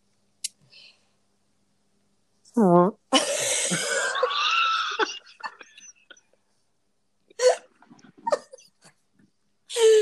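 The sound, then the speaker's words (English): A person imitates an air horn with a loud, raspy, buzzing blare lasting about two seconds, preceded by a short rising vocal squeal, followed by scattered brief breathy noises. “There's that air horn again.”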